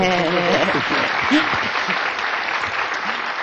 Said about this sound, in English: And I think that that was a reason for a round of applause for Jean-Paul.